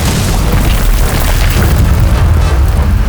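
A loud, thundering boom as Gul'dan blasts apart the door of the Tomb of Sargeras, its deep rumble rolling on heavily for about three seconds without fading, with no voices.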